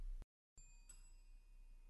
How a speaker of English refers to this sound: I gotta get a better bell.